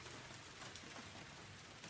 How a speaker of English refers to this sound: Outside, the rain started its cruel pounding.